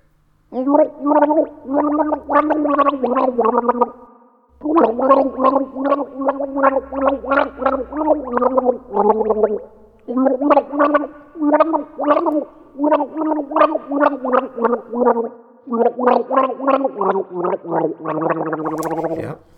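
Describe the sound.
A person gargles a pop melody, the bubbling voice rising and falling in pitch through continuous phrases with brief pauses, loud and alone with no other talk.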